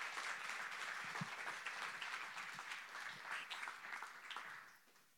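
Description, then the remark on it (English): Sustained applause from a crowd welcoming two guest speakers at a morning event, a dense wash of many hands clapping at once, steady and fairly loud before tapering off slightly at the end. “But let's give a warm round of applause to our two guest speakers this morning.”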